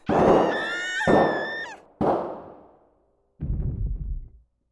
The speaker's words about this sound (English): The sound of gunshots startled me so badly, I peed myself.